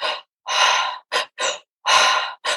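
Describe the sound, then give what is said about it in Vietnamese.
A person demonstrates transformative breathwork, breathing rapidly in and out through the mouth, six quick, loud, airy breaths alternating long and short in a steady rhythm, with no talking. “Nó sẽ là những cái nhịp thở vào và thở ra rất là nhanh, nó là như thế này này.”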